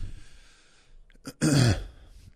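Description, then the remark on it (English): A single loud cough right into the microphone, a short harsh burst with a brief throaty lead-in, standing alone over a faint hum. “Did you really just need to cough from the microphone like that to make your point?”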